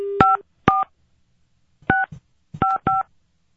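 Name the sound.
telephone keypad dialing tones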